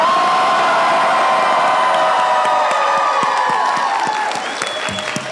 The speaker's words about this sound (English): We just want you guys to yell as loud as you can because The Walking Dead fandom just freaking rocks